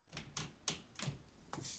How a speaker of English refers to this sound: Is that me? No, that's the floor upstairs. Really? Yeah, that's the elephant that walks upstairs.